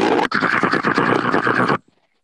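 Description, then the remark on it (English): A voice imitates a harsh, staticky inhale: a loud, raspy, hissing breath drawn in for under two seconds, with a brief catch right at the start, then silence. “It was a very staticky breathing in. It sounded like that.”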